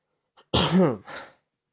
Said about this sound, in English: Sorry for all the coughing and spittiness. I think it's been so long since I've been on air that I think my gums are weak.